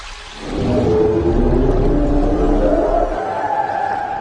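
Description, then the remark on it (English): A deep, loud whale call moans for several seconds, its low tones slowly rising and bending over a heavy underwater rumble, with no voices present. “You can't speak whale!”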